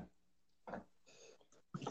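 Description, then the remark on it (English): A fairly quiet, muffled sneeze: a sharp breathy burst followed by a hissy exhale and another short explosive puff at the end, with no talking. “Bless you.”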